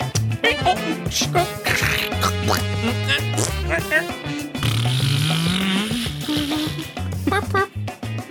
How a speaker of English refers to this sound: What a sad horn!